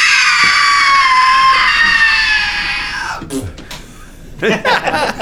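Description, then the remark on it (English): A loud, sustained high-pitched scream lasting about three seconds, sliding slightly downward before cutting off, followed by brief breathy voice sounds and muffled talking; an acted scream of a frightened character, Shania, heard by the NPCs on the boat. “Fulton and Caragor and all the NPCs on the boat, you hear Shania scream.”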